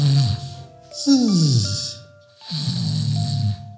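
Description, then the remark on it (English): A man snores loudly, three long rasping breaths in a slow rhythm, each a throaty rumble with a breathy hiss, and no talking. “He starts to snore.”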